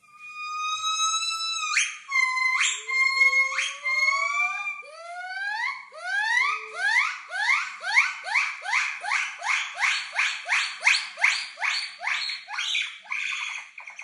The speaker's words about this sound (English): this week's noisy is the territorial call of some white-cheeked gibbons